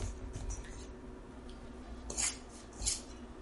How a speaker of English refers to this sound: I'm just poking things a little bit with my fork